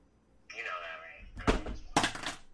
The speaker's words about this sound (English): I did know that, and then gravity just made the phone that we were video chatting on fall to the ground.